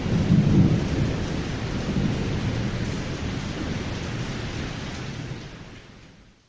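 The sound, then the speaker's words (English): Steady rain hisses continuously while a deep thunder rumble rolls underneath, strongest early on, then the whole downpour slowly fades away toward the end. No voices. “The rain sounds are always pretty cool, too.”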